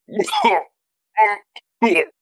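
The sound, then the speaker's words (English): A person makes a few strained, voiced choking coughs and throat-clearing sounds after choking on a strong drink, likely an imitation: one long rasping burst, then two shorter hacks with a tiny catch between, fairly loud. “You're like choking and coughing and stuff.”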